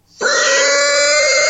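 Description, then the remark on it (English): A loud, demonic-sounding pig grunt effect bursts in abruptly and holds steady for over a second, distorted and growling with bright, buzzing overtones; no one speaks. “Satanic pig.”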